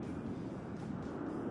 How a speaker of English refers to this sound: I can hear him. I can hear him driving in the car, or he's outside something.